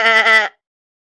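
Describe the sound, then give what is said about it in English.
A single short, wavering bleat lasting about half a second, loud, made by a human voice imitating a goat, followed by silence. “That was almost a perfect goat impression there, but not quite.”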